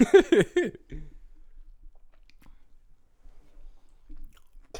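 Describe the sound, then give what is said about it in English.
A brief burst of voice gives way to quiet chewing: soft, irregular mouth clicks and crunches that carry on faintly for several seconds. “You know, fat ass over there chewing, bro.”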